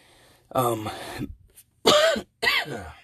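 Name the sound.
coughing and throat clearing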